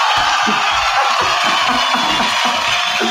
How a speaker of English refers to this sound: Here's a round of applause for you.